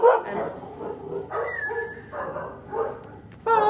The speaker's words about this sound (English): The dogs are going mad. They were being very peaceful, but the goddess has risen in them. And three of them are bitches, so they're all channeling their inner goddess.